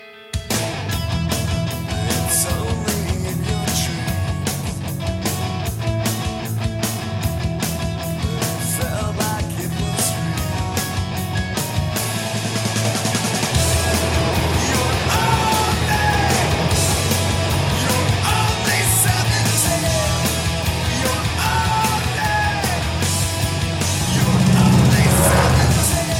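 A rock song opens with a strummed guitar, then drums come in with a steady beat and the band swells into a fuller, louder section that keeps going to the end.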